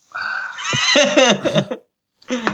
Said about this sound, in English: Bird. Yeah. Bird. Bird.